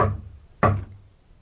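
Two heavy bangs on a communicating door, about half a second apart, each with a booming low resonance that lingers briefly. Fairly loud, with no voices.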